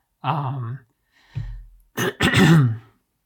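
A throaty cough made of a few rough bursts, starting with a low guttural clearing and ending in two sharp, harsh hacks, with no talking.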